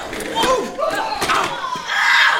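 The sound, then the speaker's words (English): Several sharp bangs and thuds, as an office chair is shoved and slammed during a fight with office supplies, break through a chaotic scene of people shouting and yelling. “I will deflect them with his desk nail in it, and as I shove this office chair at you, bro, bang!”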